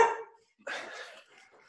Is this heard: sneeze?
no